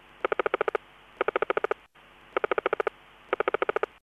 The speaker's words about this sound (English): The next clip is the aggressive sounds of a clownfish.